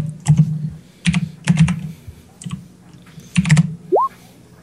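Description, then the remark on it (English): Typing on a computer keyboard to enter a 5d6 dice roll, in several quick bursts of clicky keystrokes with short pauses between, ending with a brief rising electronic beep. “So type that in.”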